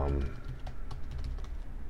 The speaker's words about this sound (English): I'm typing a link for you right now. I hope. See if it worked.